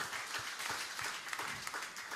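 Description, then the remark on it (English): An audience applauds itself for giving that raised over R1 million to start a project phase, a dense, steady wash of many hands clapping at once, sustained and moderately loud throughout without any voices standing out. “You can give yourselves a clap.”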